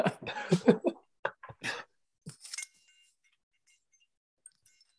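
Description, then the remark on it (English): Two worn metal medals clink and jangle together in several quick shakes, then a brighter metallic ring lingers and fades, followed by a couple of faint light taps. “My medals keep clinking.”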